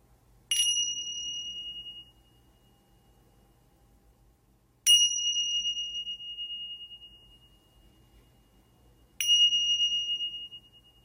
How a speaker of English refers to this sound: We will begin this meditation with three bells.